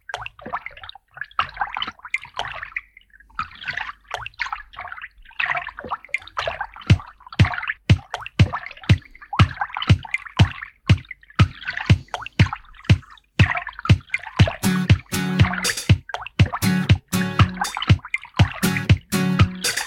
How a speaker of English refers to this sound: he incorporated a few natural sounds. Right. Into his music, and one of the ones he did was water drops